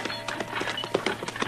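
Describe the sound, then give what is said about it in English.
Quick, rhythmic hoofbeats of a horse galloping as Chester rides out of Dodge in a hurry, a steady run of sharp thuds at moderate volume, with no other sounds on top. “Hey, he's riding like a big wind, Marshal.”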